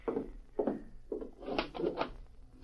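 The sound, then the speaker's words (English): A front door being unlocked and opened at night: a few separate clunks and rattles of the latch, followed by a longer wooden scraping as it swings open. No one speaks. “Open up, Lem. Open the door.”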